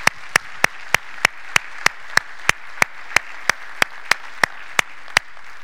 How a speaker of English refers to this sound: But I want you to take this as our gift, and let's give them an applause and thank them.